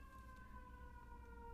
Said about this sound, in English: Yep, it's about to come by. Okay, so whenever it does, I'm just going to be quiet so you guys can just tune out this part. Here it comes. Here comes the ambulance. Here it comes.